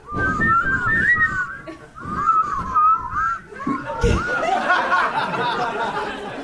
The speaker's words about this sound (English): You really can't control this group. I can't really whistle on it.